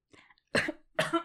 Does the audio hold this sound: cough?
yes